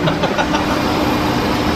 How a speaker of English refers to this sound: And you wonder why he just doesn't do it. You know, he's just sitting there revving the engine and, yeah.